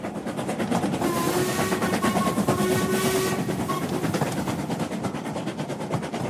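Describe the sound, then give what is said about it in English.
A train rolls into the station at Epinay with a steady rumbling clatter, while a thin, sustained squealing tone rises above it partway through, like brakes as it pulls in. “When we arrived at the station, he leapt from the train and beckoned to a porter.”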